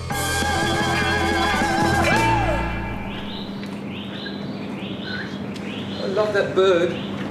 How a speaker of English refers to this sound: I love that bird.